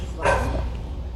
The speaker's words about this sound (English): Sorry, my dog is going crazy right now.